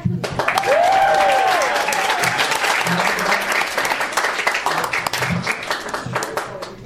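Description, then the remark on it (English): Sustained audience applause for a performer coming to the stage in the first round of a competition, a dense crackle of many hands clapping at steady loudness throughout, with a brief high whistle or cheer rising near the start. “Let's give a round of applause for Billy the Kid.”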